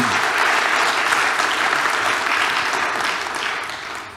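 An audience breaks into sustained applause, a dense, steady wash of many hands clapping that holds strong throughout and eases off slightly toward the end, with no voices standing out.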